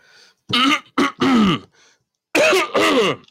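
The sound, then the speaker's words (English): A man clears his throat several times, loud rasping bursts in two clusters separated by a short pause, with no speech. “Let me clear my throat and get this down to a T.”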